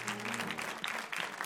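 A church audience claps together for the Lord as people are being seated, a dense, steady wash of hand clapping, loud and sustained throughout, with a faint low hum beneath.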